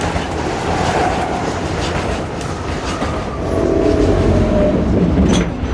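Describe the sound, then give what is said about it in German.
A New York City Subway train rumbles steadily along the rails, with dense low-end roar, a continuous clatter of wheels, and a brief higher metallic squeal near the end. “Zu fortgeschrittener Stunde befinden sie sich auf dem Rückweg zu ihrem Hotel, dem luxuriösen Waldorf Astoria, mit der New York City Subway, dem nach Peking, Shanghai und London viertlängsten und komplexesten U-Bahn-Netz der Welt.”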